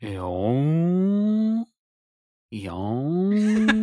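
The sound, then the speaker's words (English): A person imitates a whale call with two long, loud moaning tones, each sliding upward in pitch and then holding steady, separated by a short pause. “Those whales go...”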